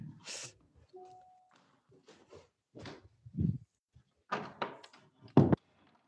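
A door is handled and pushed shut: a short creak, a few muffled bumps and rustles, then a solid thunk near the end.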